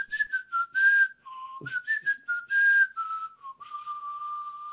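A person whistles a short melody through their teeth, a clear tone sliding between pitches with breathy hiss on the louder notes, held steady for several seconds with no talking.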